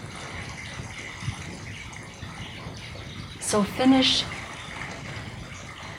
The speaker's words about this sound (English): flipping your rocks or throwing them into the water and watching the water cascade over them